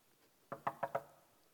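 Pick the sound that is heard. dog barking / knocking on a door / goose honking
knocking on a door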